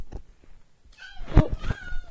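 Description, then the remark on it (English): A single drawn-out cat meow rises and bends in pitch, fairly loud, after a moment of near-quiet with a few faint soft knocks. “The ugly duckling met a cat.”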